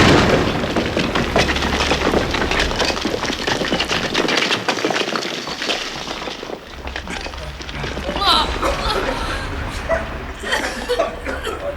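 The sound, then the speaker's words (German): A loud explosive blast from a measured charge set at the entrance of a treasure chamber gives way to a long, dense roar of crumbling debris and low rumbling that fades unevenly, with voices and a brief chuckle breaking through toward the end. “Oh, ich dachte schon, wir hätten eine Knallerbse zu viel angebracht.”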